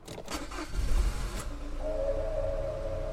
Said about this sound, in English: The looter started the car.